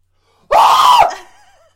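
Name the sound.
horror-movie style scream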